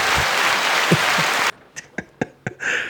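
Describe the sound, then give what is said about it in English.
A dense, hissy roar of applause that sounds almost like static fills the first half, cuts off abruptly, then gives way to a handful of scattered, separate claps. “I'm telling them it's applause, but it's just going to sound like straight static every time.”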